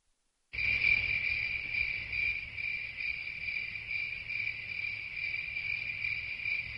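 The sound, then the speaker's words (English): Crickets chirp in a steady, continuous high-pitched trill that begins after a brief moment of silence and holds evenly throughout, fairly loud with no voices. “Yep, the crickets are chirping,”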